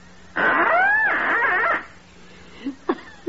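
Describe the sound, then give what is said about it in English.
A duck call blown to imitate the mating call of a female mallard: one loud, drawn-out, wavering nasal tone lasting over a second, followed by a few short, fainter squeaks. “I take this trusty little duck call, place it to my lips, and gently and sweetly, I sound the plaintive mating call of a lovesick lady mallard.”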